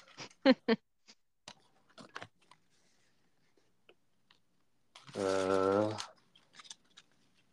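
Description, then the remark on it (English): Cards being shuffled: a burst of crisp, papery clicks and flicks in the first couple of seconds, trailing off into a few scattered taps, then a short, loud voiced tone. “Let's shuffle them up here.”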